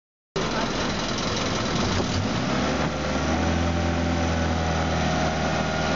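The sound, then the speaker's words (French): A loud, steady motor drone fills the whole recording, the rumbling, chugging hum of a boat engine running on a boat in Indonesia, with a deep, even pitch and no pauses. “Sur un bateau en Indonésie.”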